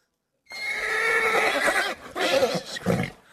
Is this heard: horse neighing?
yes